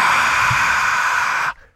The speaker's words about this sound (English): That's the crowd. Get it? Oh, cool. Yeah, sounds like breathing.